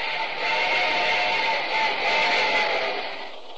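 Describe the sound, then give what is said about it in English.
A passenger train rolls steadily along the rails, a continuous, fairly loud rushing clatter with no pauses and no voices, heard from on board in the club car as the train moves along quickly. “The train was clipping, but we weren't getting far.”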